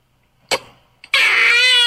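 A squirrel's alarm danger call, played from a TikTok video: a sharp burst and a quick chirp, then a loud, sustained, high-pitched screech with a buzzy, harmonic edge. No one speaks.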